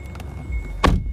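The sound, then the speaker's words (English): A car door or window is opened to let a spider out of the car, with a short, sharp mechanical thunk and a brief burst of noise over a low rumble inside the vehicle. “So let me open this real quick.”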